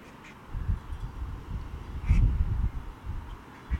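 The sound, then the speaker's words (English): A duck quacks outdoors, a few harsh, raspy calls with the loudest burst near the middle, set against low rumbling background noise with no talking. “That duck agrees with me.”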